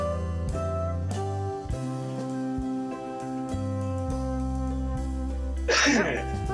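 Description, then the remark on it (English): A single sharp cough bursts out near the end, loud, cutting over steady background music that plays throughout. “One cough.”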